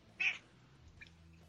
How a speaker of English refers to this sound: The cat's so talkative. Can't get over it.